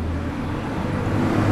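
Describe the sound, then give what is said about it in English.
A bus stopped in the middle of a crosswalk idles with a steady, loud low rumble and droning hum, growing slightly stronger toward the end, with street traffic noise around it. “Yara navigated us past the bus, around the bus, behind the bus, off the crosswalk.”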